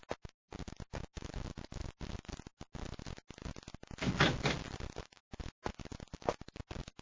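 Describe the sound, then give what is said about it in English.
A door being worked open as someone arrives at it, with a run of scraping, rattling bursts that swell into a louder rush midway before settling into scattered knocks and clatters. No one speaks. “Commander, someone's at the door.”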